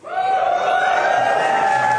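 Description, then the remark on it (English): An audience at PAX East cheers and applauds at the name of a product in a steady, loud wash of noise, with a sustained high-pitched whoop or shout ringing above the crowd throughout the two seconds. “I forgot about my favorite part of PAX East, which is you just say a random name of a product and people applaud.”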